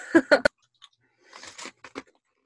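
Crisp crunching of a hard red bean cracker being bitten and chewed, a few loud snaps up front followed by softer, rhythmic crunches after a short pause, with no talking.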